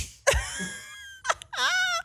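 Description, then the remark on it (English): A person imitates a porcupine with high, whiny squeals: a sharp cry that trails into a long wavering tone, a brief squeak, then a warbling, rising whine. “It's a porcupine.”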